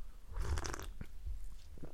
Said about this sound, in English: I'm going to take another sip of tea here.